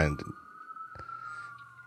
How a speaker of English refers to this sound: Do you hear Philly? It's hard to tell whether the sirens are coming from your neighborhood or my neighborhood. It's 50-50. It's Philly sirens.